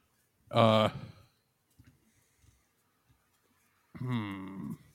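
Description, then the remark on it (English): A person makes two low, growling vocal sounds while pondering, one short burst near the start and a longer drawn-out one at the end, with only faint scattered noises in the quiet between. “just sort of low growling, pondering thoughts.”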